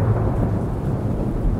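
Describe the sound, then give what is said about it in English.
A deep, continuous rumble of thunder rolls on steadily for the whole moment as storm clouds roll in over a suburb of Portland under a darkening sky, loud and low with no voices, like a storm drawing near. “He's at his home in a suburb of Portland, watching storm clouds roll in.”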